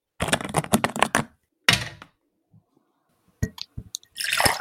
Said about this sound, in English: I'm just pouring myself a nice glass of Pure Leaf unsweetened black tea, a Keith Dambrot specialty. And we can hear the pour. It sounds delicious, actually. There's a crisp pour.